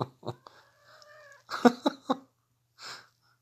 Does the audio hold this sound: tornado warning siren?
no